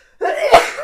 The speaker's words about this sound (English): I'm going to sneeze.